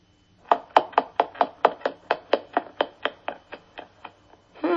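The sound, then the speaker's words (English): Footsteps on stairs: a quick, even run of about seventeen thudding steps, fairly loud at first and growing slightly softer toward the end, with no voices. “What sound did you hear? Footsteps.”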